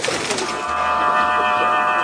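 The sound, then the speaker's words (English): Several steady, overlapping whistling tones ring out together in a sustained airy chord, like pigeon whistles humming in flight, fairly loud and continuous with no talking. “The day's big stories, along with the ancient art of pigeon whistles.”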